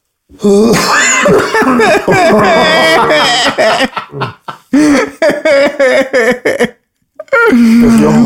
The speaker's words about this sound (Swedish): Jag försökte svälja hostan. Det är det roligaste jag sett i hela mitt liv. Det är också det mest motsägelsefulla man kan göra. Svälja och hosta samtidigt. Han hostade i slow motion. Jag försökte liksom svälja den.